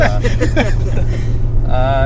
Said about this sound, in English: So we're in the truck. We are currently on our way home from Devil's Lake at 1 o'clock in the morning.